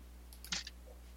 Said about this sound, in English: Dice.